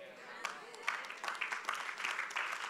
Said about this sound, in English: You must be clapping for yourself. Yeah, you must clap for yourself. Not just for me, for you.